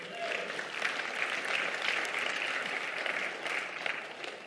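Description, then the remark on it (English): Steady applause from an audience giving God a hand clap of praise in the morning, many hands clapping in a dense, continuous wash for several seconds with no voices rising above it. “Come on, if you believe that, can y'all just give God a hand clap of praise this morning?”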